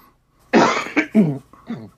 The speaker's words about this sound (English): I'm so sorry that I have a small cough today.